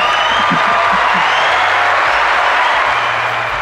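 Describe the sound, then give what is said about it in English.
A crowd applauds steadily for a few seconds, a dense wash of clapping at constant loudness with a low hum beneath it, and no talking. “Round of applause for”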